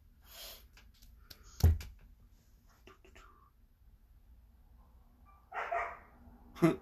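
A dog, upset by a cat, barks a few times at irregular intervals: one sharp bark early on, then a short burst and another bark near the end, over faint breathy background noise.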